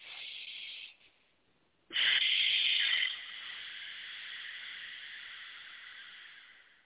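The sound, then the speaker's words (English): A breathy, hissing inhale sucked in through a constricted throat, a brief pause, then a forceful rasping exhale let out through the mouth that trails off slowly. No one speaks. “like you're sucking your breath inside your throat. so that you can release all the energy in there and then let it all out with the breath.”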